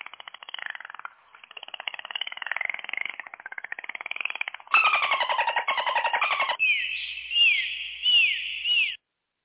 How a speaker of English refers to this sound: The clicks are the dolphin clicks. Oh, see that? I didn't know. That's why I have to ask. So this is all dolphin language.